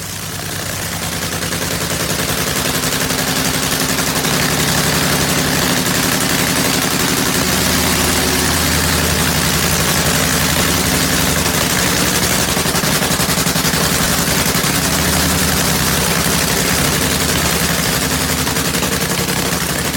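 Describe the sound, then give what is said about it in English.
A nitromethane-fuelled nitro funny car engine at warm-up, a loud, rough, rapid-fire crackling roar that fades in and then holds steady for the whole stretch, with no voices. “Wonderful sound that is, the sound of a nitro funny car warm up.”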